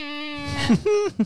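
A human voice imitates a cat's meow: a drawn-out, whiny, nasal tone followed by a couple of shorter rising and falling yowls, fairly loud, with no other sounds.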